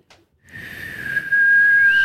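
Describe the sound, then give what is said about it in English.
A Bird Dogs whistle-tip football, thrown really hard, whistles through the air as a steady, high tone that swells in loudness and holds for over a second, with a faint rushing noise beneath it. “A free Bird Dogs whistle tip football with your pair of Bird Dogs.”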